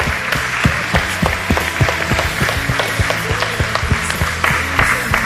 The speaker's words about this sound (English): No matter how, if you've served here in any way, friends, we appreciate the time and the effort that you put in. Everyone, please give them a warm round of applause.